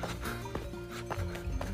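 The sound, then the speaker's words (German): Metallic clanks sound at an uneven, unhurried pace, their ringing tones lingering between strikes, from bells on a herd of cows grazing peacefully on a pasture. No one is talking. “Also, es ist ein absolutes Klischee, diese Kühe mit den Glocken.”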